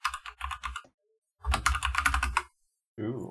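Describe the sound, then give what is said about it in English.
Crisp clacking of mechanical keyboard keys in two quick bursts separated by a pause, followed by a brief snippet of someone talking at the end. “Here's my ASMR mechanical keyboard.”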